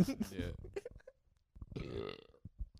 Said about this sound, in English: Did you hear that? I just fucking burped.